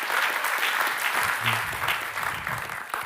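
An audience at King of Kings in Israel applauds steadily for visiting guests, dense overlapping claps at moderate volume for a few seconds, with faint voices mixed in.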